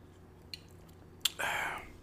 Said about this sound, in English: Let me take a sip of my drink right quick. I'm going to get back with you.